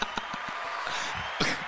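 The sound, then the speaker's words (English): A short canned crowd cheer with applause, played from a cheer button: a steady hissing wash of many voices and hands, punctuated by a few sharper claps and a brief louder swell near the end. “Was that the cheer button?”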